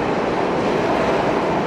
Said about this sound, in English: This dirty New York subway. That was back when New York really was still just a dirty, dirty place.